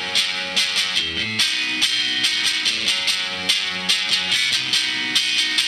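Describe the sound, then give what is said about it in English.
A Fender Maverick electric guitar from Thunder Road Guitars in West Seattle plays alone through a gated, sputtery Old Blood distortion, its heavily distorted, fuzzy tone chopped into a sputtering texture, with a steady rhythm of sharp, loud bursts over several seconds. “Boy, that kind of gated, sputtery, old blood distortion.”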